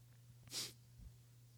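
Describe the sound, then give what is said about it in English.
A single sharp sneeze from an audience member during a sermon bursts out, bright and hissy, over a steady low hum, followed by a faint low thump and then quiet. “Oh my God, God bless you.”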